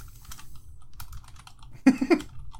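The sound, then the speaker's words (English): Rapid clicks of someone typing on a computer keyboard, light at first and then a louder flurry of keystrokes near the end, with no voices. “All the keyboards clicky-clack.”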